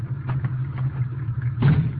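A car engine rumbles low and steady, with a brief rush of noise toward the end as the car rolls up and settles.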